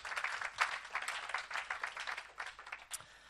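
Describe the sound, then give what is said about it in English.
A church audience claps together for the worship band in steady, dense applause, a continuous crackle of many hands lasting a few seconds with no talking over it. “Yes, give them a clap.”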